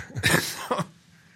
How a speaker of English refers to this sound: You're dying. I am dying. I'm sorry. At least I'm coughing away from the mic.